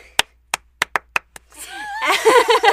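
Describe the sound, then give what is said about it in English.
Six sharp hand claps ring out at uneven intervals, then a wash of cheering voices and scattered applause swells in and keeps building to the end. “I love all the claps.”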